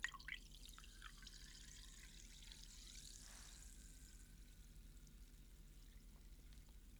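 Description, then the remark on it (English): A fizzy drink is poured, a brief splashing pour followed by a soft crackling fizz that slowly fades, with steady low background noise and no talking. “So you should have heard the pour and the fizz there.”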